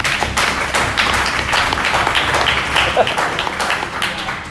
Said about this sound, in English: So we'll do a little audience participation here. Round of applause if you prefer the home run derby to the actual All-Star game.